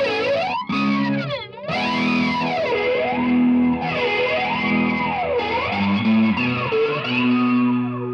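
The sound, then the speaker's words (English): An overdriven electric guitar plays sustained, bending notes with wide pitch swoops and a washy reverb tail, loud and continuous over a steady low chordal drone, with no one talking. “Maybe let's throw a little bit of drive and some reverb on there, and let's sweeten it up for the folks.”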